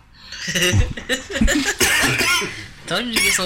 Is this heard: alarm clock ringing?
no